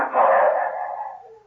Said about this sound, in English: Did you hear that, Duke? The dogs have got the shadow. It's lucky for us he left his handkerchief with the kids so the hounds could get the scent, ain't it, huh?